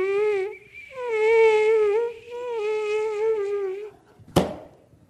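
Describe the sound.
A thin, high-pitched mosquito whine drones steadily for about four seconds with a slight wavering pitch, broken by one brief pause, then stops just before a single sharp smack.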